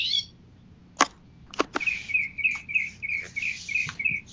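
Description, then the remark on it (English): Exotic-sounding birds chirp loudly and steadily, a rapid string of high, repeated notes running throughout, punctuated by a few sharp clicks or snaps near the start, with no one speaking. “Are the birds going to ruin this? Man, those are so loud and exotic sounding.”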